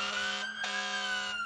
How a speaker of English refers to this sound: The next thing we know, this damn fire truck's pulling up and its bells ringing and its sirens going. Dang, dang, dang, dang, dang, dang.